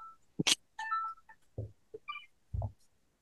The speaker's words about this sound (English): Now the computer's ringing.